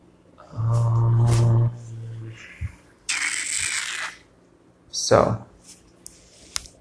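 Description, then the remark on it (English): Playing cards are shuffled in a few quick papery riffles, one long burst followed by a shorter one, after a brief humming voice at the start. “So, and then eventually I'm going to pull a card and get the energies from the card, which I've been shuffling and doing all night anyway.”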